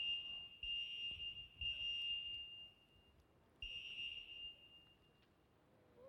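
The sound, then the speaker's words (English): A piercing, high-pitched fire alarm blares in long steady tones, cutting out briefly and resuming, with faint low thumps beneath and no talking; apparently a false alarm. “Apparently, it's a false alarm.”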